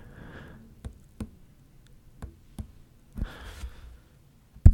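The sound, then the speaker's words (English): Soft, light taps spaced out at an uneven pace, mimicking quiet footsteps overhead, with a breathy sigh near the start and another midway, ending on one sharper knock. “Just quiet little baby taps.”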